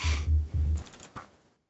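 Muffled thumps give way to a short run of light computer keyboard clicks, a handful of quick taps before fading out, with no one speaking.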